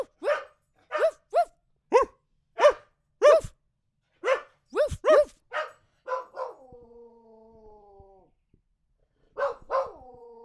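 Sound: dog barking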